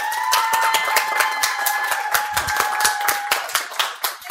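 A crowd claps steadily in a dense, continuous round of applause, with a sustained whistle-like tone running through it before the clapping thins out near the end.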